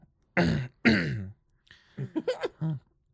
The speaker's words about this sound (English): Sorry, to clear my throat.